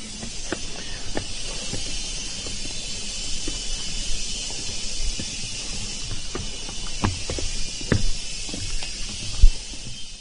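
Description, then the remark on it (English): Loud, steady cicada buzzing fills a tropical forest as a high, unbroken shrill drone, with scattered soft thumps and footsteps underneath. “That is not the whine of some piece of machinery, though. Those are the cicadas.”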